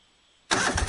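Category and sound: machine, lawn mower engine starting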